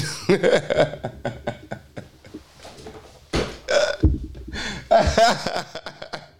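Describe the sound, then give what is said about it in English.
A quick run of loud fart noises, one raspy blast after another with short gaps between, some longer and wetter than others, and no talking. “We might turn today's Cesaroja into a fart session.”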